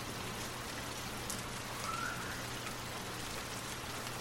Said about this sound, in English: Begin at the top of your head, and imagine a warm, gentle rain washing away any tension in your scalp, your forehead, and your face. The rain continues to cascade down, moving down your neck and shoulders, relieving any tightness or knots.